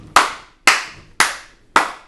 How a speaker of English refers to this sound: That's a snap and a clap. That's a snap and a clap. That's a mid-snap clap.